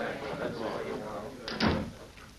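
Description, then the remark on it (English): Over a murmur of voices, a door is pushed shut on a sheriff's order, with a short scrape and a solid thump near the end. The background chatter then carries on. “Sheriff, tell those men to move back. And then close the door.”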